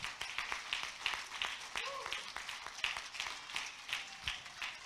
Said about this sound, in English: Clap your hands one more time.